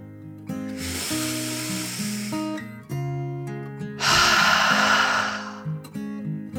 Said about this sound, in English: Frankie took another deep dragon breath, in and out.